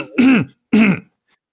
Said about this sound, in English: Okay, did I forget somebody or are you just clearing your throat? You forgot me.